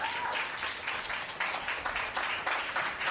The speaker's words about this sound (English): Round of applause.